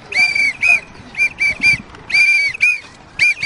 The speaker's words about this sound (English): The sound of whistles rent the air as hundreds of Kenyan anti-gay activists staged protest marches on one of the edges of Nairobi's popular historic Independence Park.